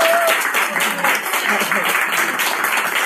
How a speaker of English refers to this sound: So just so that you can understand how many people are actually in the room, I'm going to get you guys to just give us a round of applause.